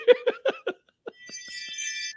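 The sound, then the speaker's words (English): A few quick bursts of laughter, then a wind chime rings out with bright, high, overlapping tones that shimmer and linger for about a second at moderate volume. “Man, how you got a wind chime?”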